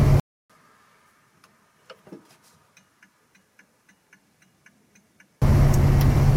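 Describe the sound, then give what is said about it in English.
A Morris Minor classic car driving in wind and rain: a loud, rushing roar with a low engine hum briefly drops away to a quiet stretch of steady, regular ticking, then the roar returns. “And the rain doesn't bother me too much, so hopefully the wind and rain doesn't bother you in terms of the audio too much either.”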